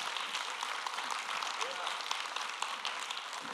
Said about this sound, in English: Somebody clap your hands this morning a little bit.